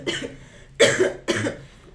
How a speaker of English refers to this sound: Sorry. What is happening here? I'm coughing.